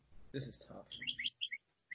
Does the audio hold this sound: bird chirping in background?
yes